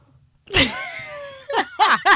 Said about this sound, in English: But you know what? Let me clear my throat before I talk about my king.